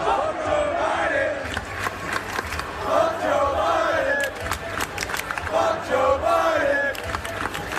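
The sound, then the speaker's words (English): A large stadium crowd at a college football game chants 'F Joe Biden' loudly in unison, a rhythmic, repeated shout rising and falling over a constant roar of voices and scattered sharp claps. “Are they saying F Joe Biden? They certainly are.”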